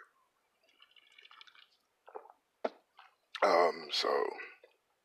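A quick sip of a drink: faint slurping, a few wet mouth clicks and a swallow, then a loud, breathy exhale afterward.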